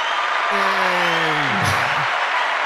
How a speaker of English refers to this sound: Long round of applause. Okay, enough of that.